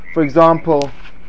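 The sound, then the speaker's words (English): Three quick, nasal frog croaks sound fairly loud, separated by short pauses, with no talking around them. “For example, who's got the frog? Get the frog out.”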